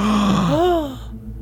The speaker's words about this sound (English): Gasp.